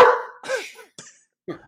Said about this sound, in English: Apparently, that dog that's does absolutely not like the Lakers. Does not like the Lakers.